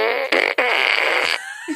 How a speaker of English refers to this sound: So yeah, if anyone has Google Home, no, you can ask it to play fart noises, and it has a whole playlist of fart sounds.